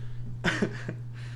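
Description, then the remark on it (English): A short throat clearing: two or three rough, gravelly bursts in quick succession over a steady low hum, with no talking. “Yes, yes, I do, but I need to sound authoritative, so let me clear my throat first.”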